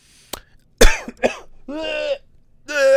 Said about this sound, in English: Sorry to cough on you if you heard that. R.I.P. headphones listeners.